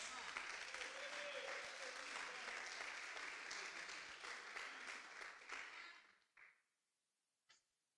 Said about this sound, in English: That deserved a good hand clap, too. Come on, put your hands together.